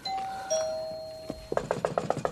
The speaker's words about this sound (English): And the doorbell rings.